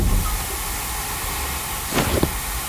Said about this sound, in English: What is that? It's poison gas.